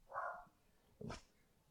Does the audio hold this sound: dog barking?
yes